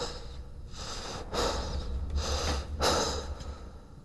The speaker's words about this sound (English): Two-thirds up. He stops to catch his breath. His ragged gasps echo around the stairwell.